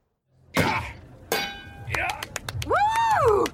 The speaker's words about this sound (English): Yeah, I mean, he's clearly proved he's strong enough to ring a little bell now.